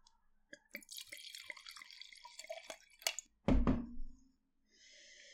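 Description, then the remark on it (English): Wine trickles and drips as it is poured into a glass, with a soft knock of glass partway through and a gentler splashing stream near the end; no one speaks. The wine was aged nine months in French oak barriques. “Okay, right, let's pour this one.”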